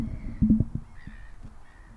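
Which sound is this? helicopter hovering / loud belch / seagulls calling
seagulls calling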